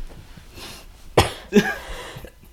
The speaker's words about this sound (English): Excuse me, I have a cough this week. Too much juuling.